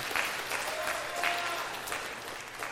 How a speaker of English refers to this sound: Why are we clapping for that? Who started that?